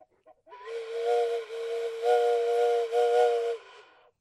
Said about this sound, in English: Are we at Nitpick Station? Can I blow my whistle?